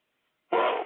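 After a moment of silence, a single sudden, forceful sneeze bursts out loud, a sharp noisy blast that holds briefly before trailing off.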